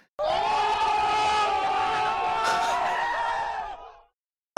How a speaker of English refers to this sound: That was the drop I had to get. I wanted to have a crowd noise when you said the line.